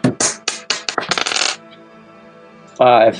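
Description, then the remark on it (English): A small six-sided die, rolled for a random monster encounter in a tabletop game, clatters across a hard tabletop in a quick series of sharp bounces that speed up and settle, then a brief voice is heard after a pause. “would you roll for random monster encounter, a six-sided dice, and a one or a two?”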